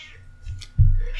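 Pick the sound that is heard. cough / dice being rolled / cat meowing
cat meowing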